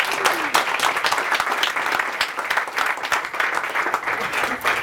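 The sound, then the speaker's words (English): An audience applauds steadily for about five seconds, a dense, even wash of many hands clapping at once with no voices standing out. “All right, let's clap it up.”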